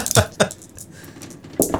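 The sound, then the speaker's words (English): Dice clatter across a hard surface in two quick bright clicks, then a short lull before a final rattling knock, crisp and fairly loud with no voices. “I don't know how I'd react, so I'm letting dice decide for me.”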